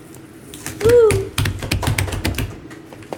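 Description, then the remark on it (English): Scissors snip through a plastic snack pack, used by a person wearing gloves, with a quick run of crisp clicks over about two seconds, just after a short excited vocal exclamation. “Scissors! I summon these scissors.”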